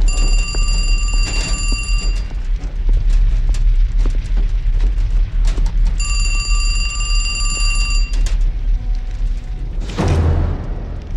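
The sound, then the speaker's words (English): A payphone rings in a film scene after a bus blows up, the bus burning in the background as Keanu first ignores it, then walks toward the payphone: two bright, high-pitched bursts about two seconds long, separated by a pause, over a constant low rumble. A loud, sharp crash breaks in near the end. “The bus blows up, and then you hear a phone ringing, and Keanu, ignores it at first, and then he just the bus is burning in the background and he's walking toward the payphone.”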